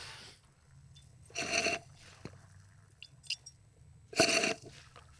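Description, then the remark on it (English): A hand pump drawing creek water: two loud, squishy, hissing strokes about three seconds apart, with a few faint clicks and squeaks in between and a low steady rumble underneath. “All right, creek water being pumped.”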